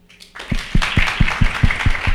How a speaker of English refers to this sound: That's about right. That is, in a room this size, that smattering of applause feels legitimate, right? There are a lot of people here.